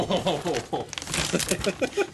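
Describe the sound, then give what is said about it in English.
Heavy, layered, shiny red wrapping paper crackles and rips in quick, busy bursts as a gift is torn open, revealing a War of the Ring Lord of the Rings miniature set, with people talking over the rustling. “Notice the heavy, layered paper technique?”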